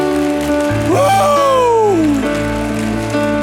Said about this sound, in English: Why you all give God a hand clap and a shout of praise.